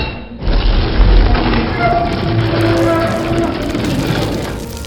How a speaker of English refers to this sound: concrete dust rains down upon us as the ceiling pulls back.